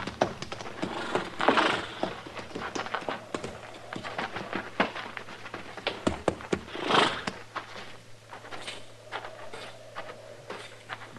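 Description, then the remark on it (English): Horses' hooves clomp and shuffle irregularly on a barn floor as the horses are put in the barn, with a couple of breathy snorting bursts rising over the steady knocking; no one speaks. “Put our horses in the barn here”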